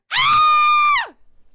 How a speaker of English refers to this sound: Can I audition for the scream?